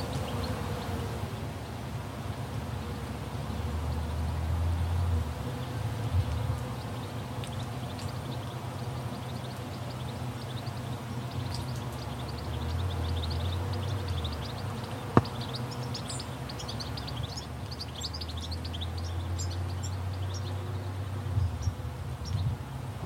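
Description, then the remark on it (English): Several birds chirp and sing in scattered bursts at the Slapjack Vineyard from Terra Sancta in central Otago, New Zealand, layered over a steady low rumble and a faint outdoor hiss, with no one speaking. “You can hear several birds singing their songs.”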